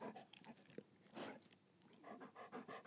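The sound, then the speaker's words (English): A dog, Kaysen, makes a string of short, eager grumbling and whining vocal sounds mixed with breathy panting and mouth noises, with no one talking over it. “And it's hang on, Kaysen wants to say I.”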